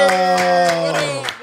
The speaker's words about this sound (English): Man, we got a special guest in the building, man. Y'all clap it up for the one and only Van Lathan.